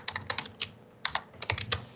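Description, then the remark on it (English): Fast keyboard typing, fairly quiet: quick bursts of crisp key clicks with short pauses between flurries, no voices present. “He's just slapping a fucking couple of Slim Jims in the counter. He's not even typing.”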